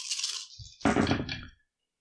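Dice are rolled for a ranged combat roll, rattling and tumbling across a hard surface: a light, hissy clatter first, then a louder burst of overlapping clicks that settles and stops after about a second and a half.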